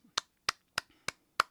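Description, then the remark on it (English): Five sharp, bright claps land at a steady, evenly spaced pace, each a crisp snap that dies away quickly, with silence between them and no voices. “Drum roll and a clap.”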